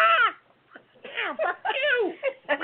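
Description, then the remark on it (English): A person's voice imitates a squawking parrot, as a demo of swearing gray parrots separated at a London zoo: harsh, strained, pitch-bending cries in several loud bursts, with a short pause after the first one. “He's going to do a demo.”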